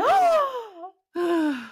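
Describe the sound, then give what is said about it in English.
Two loud, theatrical gasps, each a voiced, drawn-out intake sliding down in pitch, separated by a brief pause. “Oh, the gasp. Clutch your pearls.”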